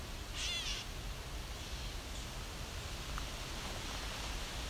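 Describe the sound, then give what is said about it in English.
A gray catbird gives a single short, cat-like mewing call near the start, fairly faint against steady outdoor background hiss, followed by a few softer, scattered chirps. “We got ravens and catbirds.”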